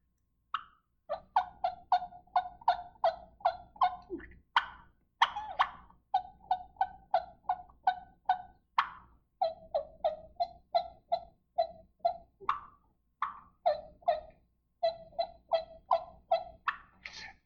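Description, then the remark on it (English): Soft, high turkey tree calls blown on a mouth call: quick whistled notes breaking into short light yelps, a whistle yelp, repeated in rhythmic clusters for about sixteen seconds with brief pauses, no talking. “And so what I try and do is just do a little tree call, which a tree call is nothing other than a whistle yelp, what I call a whistle yelp.”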